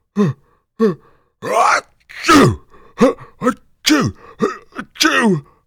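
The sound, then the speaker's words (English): A voice acts out a run of sneezes by a story character with a very bad cold: one big sneeze followed by two more. Each is built from gasping intakes and a sharp, breathy burst, in a quick, uneven series of loud vocal bursts. “Just as Fred started to open his mouth to speak, he let out a big sneeze, followed by two more.”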